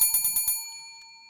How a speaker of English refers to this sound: If you want, this is the bell here.